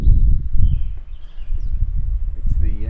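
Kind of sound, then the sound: nature, wind outdoors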